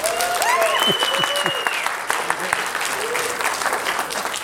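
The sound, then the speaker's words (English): An audience at a Scarathon movie marathon bursts into steady applause for Derek M. Cook, dense clapping with a few whoops and cheers rising over it at the start, the clapping holding loud and even for several seconds. “Please give a gigantic scarathon round of applause for Mr. Derek M. Cook.”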